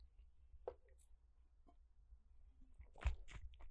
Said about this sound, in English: Now, my throat is actually going, so I'm going to have to take a sip. I have to do one every single episode.